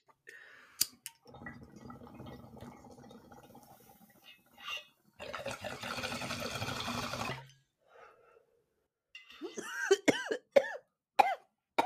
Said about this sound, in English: Bong rip. I love bong rips.